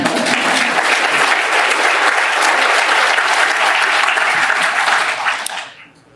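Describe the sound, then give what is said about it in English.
A crowd at a union speech applauds loudly and steadily, a dense wash of clapping that holds for about five seconds before quickly fading out. “That's an applause line.”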